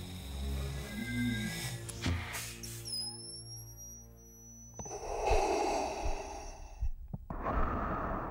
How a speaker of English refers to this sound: This deep breathing is the sound of the father, the Freudian primordial father, this obscene, overpotent father, the father who doesn't want to die.